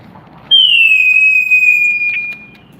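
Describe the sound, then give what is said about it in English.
A single high, loud whistle that starts sharply and slides slightly downward in pitch, holding for about two seconds before cutting off, with only faint low background noise around it. “That wasn't me whistling.”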